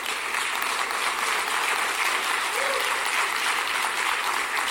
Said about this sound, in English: So thank you for that 1.5 hand claps. I really appreciate the encouragement.